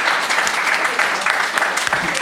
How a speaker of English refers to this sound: Oh. Very lovely answer. Round of applause for that answer, please.